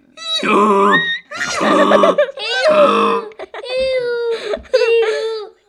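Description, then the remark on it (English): A person loudly imitates a donkey's bray, producing a series of strained, honking vocal bursts with rising and falling pitch, repeated about five times in close succession. “I want to do a donkey.”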